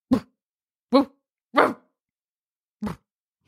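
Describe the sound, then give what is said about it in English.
A person imitates a relaxed, sleepy dog with four short, soft woofs, spaced unevenly with brief pauses, fairly quiet, like a drowsy bark. “Woofing, woofy, woof. I only know how to do relaxed dog, which Chewy?”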